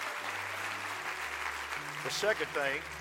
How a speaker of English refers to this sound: So would you clap your hands for your church on that?